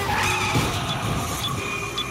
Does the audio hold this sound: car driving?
yes